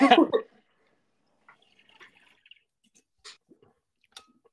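A person sips water: a brief thump, then a few quiet, wet slurping and swallowing sounds spaced out over a few seconds, with no talking.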